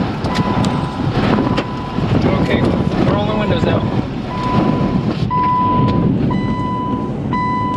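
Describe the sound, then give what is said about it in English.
Violent tornado wind roars without pause about 50 yards away, scattered sharp knocks of debris striking and coming into a car, a man's voice speaking over the din, and a steady electronic beep chiming in toward the end. “The tornado moves over that, and I watched it as it just tumbled the irrigation system right next to me. Oh, it's right there. Right freaking there. Got debris coming into the car.”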